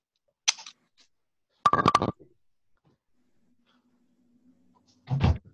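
A door in a house shuts on its own with a sharp click, then a rattling burst of latch noise and a dull low thump a few seconds later. Nobody speaks.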